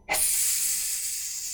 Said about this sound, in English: That's a snake.